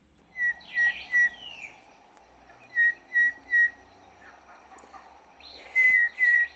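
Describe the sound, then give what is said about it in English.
A person whistles an imitation of a Cape Batis call: three sets of three clear, evenly spaced high notes, fairly loud, with a low steady hum behind and no talking. “That was me whistling, by the way.”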